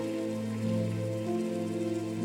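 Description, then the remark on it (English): An audience claps together in a dense, steady patter of many hands that runs evenly for a couple of seconds, with sustained low musical tones held underneath. “I hope the clap was for Jesus.”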